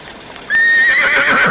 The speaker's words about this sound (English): Calm down. Calm down, horses. Calm down.